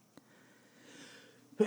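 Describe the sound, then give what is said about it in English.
A single sneeze: a soft, rising breathy inhale followed by a sudden loud explosive burst at the very end, with no talking. “We sneeze on the show.”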